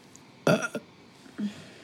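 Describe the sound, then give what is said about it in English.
A loud burp bursts out for about a third of a second, followed by a softer, shorter low grunt or second belch a moment later, with quiet around them. “A burp is a sandwich.”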